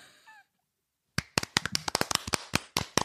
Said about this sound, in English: I do want to point out that we should have given the clap to someone. I think Pliny the Elder and Pliny the Younger should have gotten clapped at. So, guys, hey, you two, you're getting the big clap.